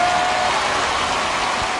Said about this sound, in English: What are those people screaming and yelling about?